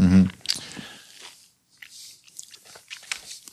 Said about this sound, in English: He was eating a peach the entire time.